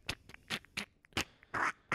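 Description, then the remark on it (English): A quick run of about six sharp, loud knuckle cracks in an uneven rhythm as a man clenches his fists and brings his knuckles together, with a few fainter pops between them and no talking. “When I bring my knuckles together, they crack like crazy.”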